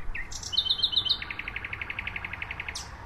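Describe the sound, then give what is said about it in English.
A nightingale sings near oak trees in the Tiergarten, Berlin, about 50 meters from the presidential palace, moving from a high whistle through a few bright separate notes into a long, rapid, steady trill, over a low, constant background rumble. “This is one of the favorite places that nightingales stay for the 6 weeks or so that they're here.”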